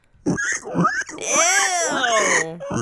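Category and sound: vocal imitation, voice imitating pig oinking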